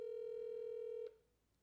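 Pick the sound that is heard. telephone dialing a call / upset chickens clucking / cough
telephone dialing a call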